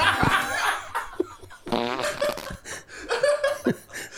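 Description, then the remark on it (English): A string of loud fart noises, buzzy and sputtering, several in a row with short gaps, mixed with bursts of laughter and breathy snickering. “That's fart noises, that's all.”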